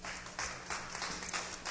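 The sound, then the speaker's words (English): A crowd claps together as a hand clap for the Lord, a dense, steady patter swelling in loose waves, fairly quiet, with no voices standing out. “So let's give the Lord a hand clap.”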